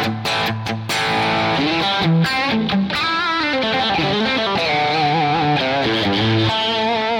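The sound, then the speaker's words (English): A distorted electric guitar, toggle switch in the bridge position, plays a solo with bent notes and quick runs. It is loud, with a gritty rock-and-roll tone from a nominal amount of distortion, sustaining over chugging low chords with no voices. “So as I play, and you can hear I've got a nominal amount of distortion on there.”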